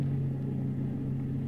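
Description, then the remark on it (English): A car drives steadily along at under 25 miles an hour, its engine giving off a low, even droning hum with a faint road rumble, constant throughout with no voices. “I drove under 25 miles an hour all the way.”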